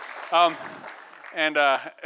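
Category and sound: crowd, audience clapping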